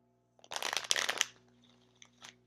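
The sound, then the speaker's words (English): A deck of cards being shuffled, a quick dense burst of riffling and flapping for under a second, followed by a couple of faint soft card taps against a quiet background hum. “I'm going to shuffle one more time, and then I'll go ahead and cut it, and then we'll go ahead and see what the cards have to say.”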